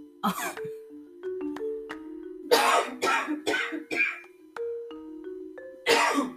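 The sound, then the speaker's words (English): Several harsh coughs: a single cough, then a quick run of four, then one more near the end, over soft steady tonal notes in the background. “Once again, I don't understand why every time I just start recording, I ain't coughed all day and I decide to cough now.”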